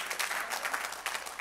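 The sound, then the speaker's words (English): An audience claps together, a dense patter of many hands at moderate volume, steady with small swells, and no voices over it. “Oh, I got less claps on that one, but.”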